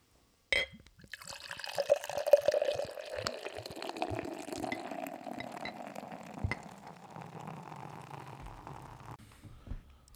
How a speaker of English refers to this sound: Alrighty, we have the Campfire Amplifier poured out for us. This is, again, milk stout, and it is in the style of a campfire stout.